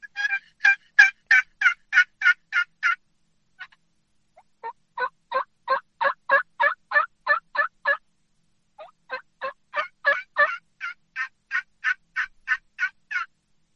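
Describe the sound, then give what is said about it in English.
Rhythmic turkey hen yelping imitated on game calls, three loud runs of evenly spaced notes with short pauses, two distinct pitches from the same location suggesting a couple of hens calling, no talking. “It sounds like, you know, maybe a couple hens, and it may help in getting that gobbler in a little bit more, but it, you know, if you're able to sound like more like a couple birds, it definitely can help versus just sounding like one.”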